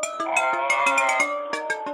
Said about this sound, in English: Oh, wait. Oh, my God. This is really embarrassing, George Lucas. My phone's ringing.